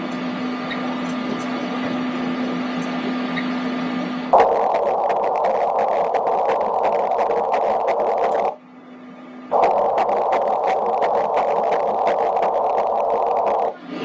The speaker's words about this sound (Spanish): Justo aquí, el latido del corazón.